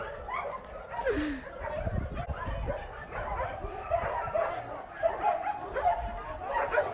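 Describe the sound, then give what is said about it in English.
Several rescued dogs bark and yip in a noisy chorus, with high whimpering calls mixed in, continuous, while people talk underneath the commotion. “All the dogs you see here or were shot, were broken, or were hit by a car or something like that.”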